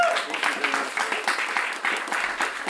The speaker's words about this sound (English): Let's please give him a warm round of applause.